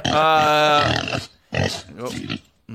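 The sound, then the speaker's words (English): Loud pig noises from a sound effect of two pigs: a long, strained squeal followed by a couple of shorter grunting squeals, with no talking. “That's the sound effect of two pigs fucking.”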